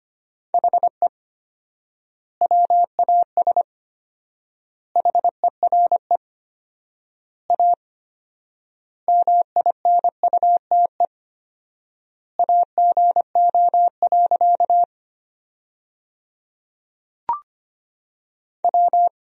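Morse code practice at about 25 words per minute, sending sentences from the top 500 words with 4x word spacing: a steady, mid-pitched tone keyed into rapid dots and dashes, grouped into words with long pauses between them. There are no voices and a single click.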